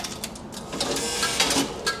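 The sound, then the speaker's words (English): A trolley bus fare box, from when the fare was 20 cents, gives a steady, raspy mechanical buzz for a dropped penny, lasting about two seconds with a few sharper pulses, fairly loud and with no talking. “The penny was a buzz.”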